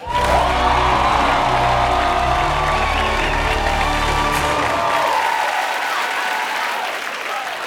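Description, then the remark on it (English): A large studio audience of The Daily Show applauds and cheers loudly as Roy Wood Jr. is introduced, with whoops and shouts over dense, steady clapping that continues for several seconds before easing slightly toward the end. “So please rise, but not really. You can just clap as Roy Wood Jr.”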